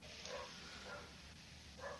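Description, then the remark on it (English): A dog, the ship's mascot brought down from Voyager, gives three short, high barks spaced across two seconds, faint against a steady background hiss. “Who brought the dog down from Voyager?”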